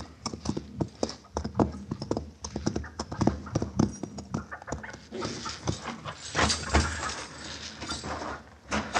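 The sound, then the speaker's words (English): A horse's hooves clip-clop away in a quick, uneven rhythm of sharp knocks, giving way to a rougher, noisier scuffle toward the end. No one speaks. “Your horse has scattered away.”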